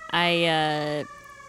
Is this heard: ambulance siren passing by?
yes